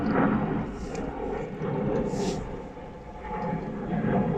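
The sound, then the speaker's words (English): A steady, low roaring rumble of an aeroplane passing overhead, heard from a car park on a windy day, filling the whole stretch with a broad droning wash that swells slightly and fades a little before building again. “Oh, there's an aeroplane flying overhead.”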